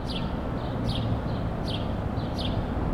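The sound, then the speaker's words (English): A house sparrow in the center of New York City gives sharp, piercing cheeps, about four high downward-sweeping chirps spaced unevenly, over a constant loud low rumble like city traffic. “The shouting of the birds, you know, it's interesting because I live here in the center of New York City, and one of the most common birds that we have is the house sparrow, and they have such a piercing cheep.”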